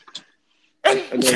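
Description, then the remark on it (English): A loud sneeze bursts out after a short quiet pause, a sharp explosive blast with a breathy follow-through, preceded by a faint brief intake of breath. “Bless you.”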